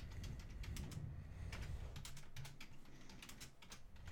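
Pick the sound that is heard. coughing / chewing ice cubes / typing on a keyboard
typing on a keyboard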